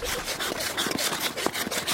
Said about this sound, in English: recorded these wintry sounds at the skating rink on Boston Common known as the Frog Pond.